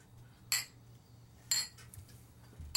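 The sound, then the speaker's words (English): Glasses clink together in a toast in a studio, three bright ringing taps spaced about a second apart, with a low steady hum underneath and no talking. “So as we here in Studio G raise our glasses, our enemies never drink, but our friends always do.”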